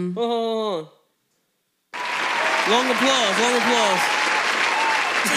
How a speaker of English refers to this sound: Long applause.